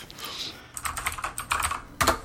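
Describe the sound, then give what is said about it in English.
Rapid typing of a message to Ashley on a computer keyboard, a quick irregular run of crisp clicks and clacks with a louder keystroke near the end, no voices. “I'm messaging Ashley right now to tell her that you want Dave John.”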